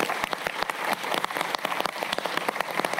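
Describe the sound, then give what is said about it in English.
An audience at a live event applauds the Australian Writers Centre team, dense overlapping claps forming a steady, crackling wash of sound that holds an even loudness throughout, with no voices heard. “So can we please give the Australian Writers Centre team a massive clap?”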